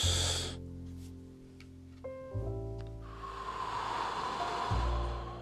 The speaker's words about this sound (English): So we're going to open today with some deep breathing. Let's take in a few deep breaths together.